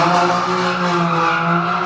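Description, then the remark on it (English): A BMW M3's tires squeal in a loud, steady, tonal screech lasting about two seconds, layered over a roaring engine, throwing up a cloud of dust. No voices. “M3. Tire squeal out of that.”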